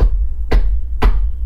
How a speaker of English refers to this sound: Sounds like a knock on the goddamn devil's door to me.